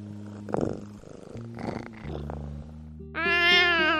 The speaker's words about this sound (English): How suspicious. I don't think this is the first time I have heard a cat noise. I don't recall that I have heard any cat noise.